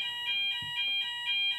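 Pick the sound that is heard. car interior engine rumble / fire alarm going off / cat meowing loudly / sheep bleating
fire alarm going off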